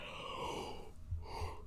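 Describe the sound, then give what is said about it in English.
A single breathy yawn: a drawn-out airy inhale that trails into a softer, lower exhale, heard on its own without any talking. “Sorry, I had another yawn.”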